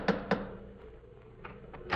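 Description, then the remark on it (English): A door knocker, covered with icicles, strikes Dr. Watson's front door on a January sleet-storm night: two sharp, resonant raps, a short pause, then three more, the last a little stronger, with no voices. “Well, here we are once again, about to lift the knocker of Dr. Watson's familiar front door.”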